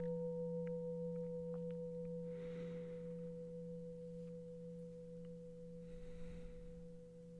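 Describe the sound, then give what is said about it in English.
A meditation bell rings on in a steady, pure hum with a few clear overtones, slowly fading over several seconds. Two soft, breathy swells pass beneath it, and no one speaks. “And with each bell, as you exhale and hear it drift off, invite yourself to settle in a little deeper.”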